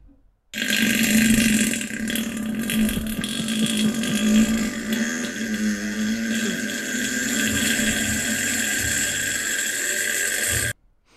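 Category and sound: human body sound, farting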